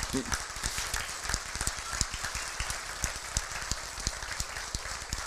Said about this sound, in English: We just had a wonderful program. Amen? And you can clap now and show your appreciation.